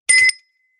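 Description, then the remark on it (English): A single quick bell ring, bright and metallic, with a short burst followed by a faint shimmering tail that fades within a fraction of a second. No voices. “I was a bit late with the bell.”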